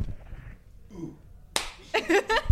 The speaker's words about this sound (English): Welcome. Oh, do you need a clap? Yeah, please. Would you mind giving us a clap?